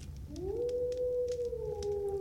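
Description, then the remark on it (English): A single long animal howl rises quickly, then holds a steady, drawn-out tone. It sounds faint and far off against a low background hiss, with no voices. “And it was just one lone howl.”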